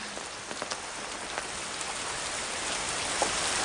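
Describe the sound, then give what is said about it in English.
Steady rain falls and patters on a surface, a dense hiss with scattered sharper drips, continuous, with no voices. “which disappoints her a bit on an already cruel rainy day.”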